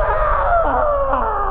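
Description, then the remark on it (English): A man screams loudly into a gas mask, one sustained, strained cry lasting over a second, sounding muffled and boxy with no clear words. “I screamed into my gas mask.”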